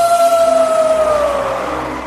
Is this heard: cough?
no